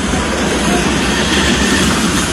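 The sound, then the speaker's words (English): A train rumbles steadily along railroad tracks, loud, with a continuous grinding roar of wheels on rails and no break in the sound; the train has just hit a police patrol car. “346 patrol car was just hit by a train.”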